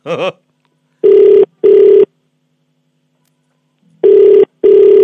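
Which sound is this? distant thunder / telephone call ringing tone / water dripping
telephone call ringing tone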